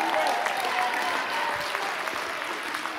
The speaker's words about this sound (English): If you believe that with me, why don't you take your two anointed hands, clap them unto God, and give the Lord a mighty shout all through this auditorium.